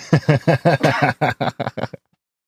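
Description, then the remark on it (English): A rapid run of about a dozen harsh, voiced coughs and choking gasps from a person choking on an ice cube, in a steady rhythm, loud at first and fading slightly before stopping abruptly into silence. “is choking on an ice cube.”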